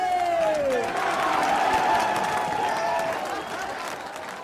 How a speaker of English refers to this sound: And on top of that, the crowd cheering when they heard him saying, I'm not fucking leaving, which is just,